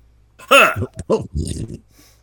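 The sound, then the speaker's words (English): A strained, voiced cough-like sequence: about four quick, throaty bursts with a groaning, pitched vocal tone, loud at first and then trailing off, with no other talk. “But I didn't say I wouldn't be coughing.”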